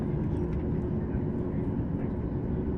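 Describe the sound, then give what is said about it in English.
A jet airplane engine spools up, roaring in a steady, dense low-pitched drone heard from inside the passenger cabin after the cabin door closed, holding constant loudness throughout with no breaks. “Moments later, the engine spooled up, and soon a burst of cold air cascaded down from the tiny vents in the ceiling.”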